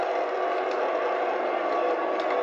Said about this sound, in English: When my hand goes up, the booing stops.